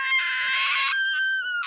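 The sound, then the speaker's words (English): A person imitates a shrill cartoon character's scream: a loud, raspy shriek held for about a second, then thinning into a high, wavering whine before a brief final screech, with no talking. “Other thing I remember is the lemon scream.”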